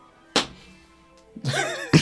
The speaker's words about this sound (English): Are you in a panto, or are you just slapping your thigh for fun? Just slapping it for fun. The ground rattles every time you do that.